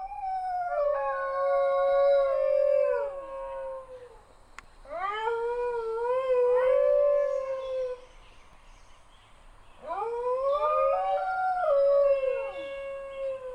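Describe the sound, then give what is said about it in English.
Dingoes howling in three long, wavering bouts, the drawn-out cries rising and sliding down in pitch, with overlapping voices and brief pauses between. No one speaks. “One interesting thing about the dingo is that it very rarely barks, though they are known to howl.”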